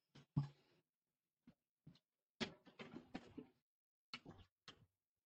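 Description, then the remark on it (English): A door shuts with a solid thump, followed by a series of sharp clicks and rattles from the handle and latch, with no voices. “I'm gonna shut this door.”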